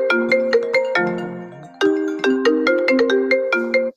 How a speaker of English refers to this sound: Sorry about that, guys. I got a phone call. Hold on.